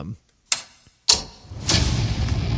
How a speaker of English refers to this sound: Like, so you've got Han clicking on all the buttons in the Falcon, but then it sounds like an engine revving, right?